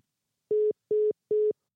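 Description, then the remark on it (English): Three short, steady telephone tone beeps sound alone in an even rhythm, clear, like the line tone heard after a call disconnects. “Well, that was, an out of the blue phone call.”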